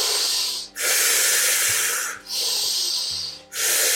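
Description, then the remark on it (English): Forceful breaths drawn in and pushed out in a steady rhythm during a guided active breathing exercise, each a loud, airy rush, with brief pauses between them and no talking. “About 15 more rounds of the active breath in the second round before we go into our second breath hold. Breathing in and breathing out.”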